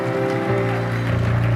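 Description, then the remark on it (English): An audience claps together during a morning sermon in a steady wash of applause, layered over sustained, droning musical chords that swell slightly partway through. “Come on, clap your hands a little bit this morning, man.”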